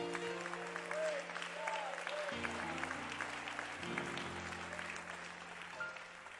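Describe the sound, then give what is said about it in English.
An audience at a church service claps hands together to give the Lord praise after a prayer, a dense, sustained burst of applause, with a steady organ or keyboard chord droning underneath and shifting pitch partway through. “Give the Lord a hand clap of seed.”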